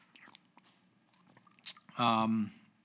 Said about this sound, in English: Sorry, I had to sip some water. I'm rather parched.